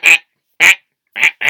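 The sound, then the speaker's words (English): A person imitates a duck with four short, nasal quacks in quick succession, fairly loud, with brief silences between them. “Do they quack? Quack, quack.”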